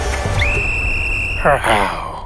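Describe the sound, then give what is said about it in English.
A person imitates a baby tiger cub: a thin, high whistling tone held for about a second, then two short, squeaky, wavering cries that fade out. “Tu harimau baru bangun tidur hari itu, tak, itu I'm trying to do a baby cup and sound actually. A baby tiger sound.”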